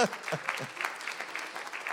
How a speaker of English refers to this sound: It was a great message, come on. Applause for Pastor John.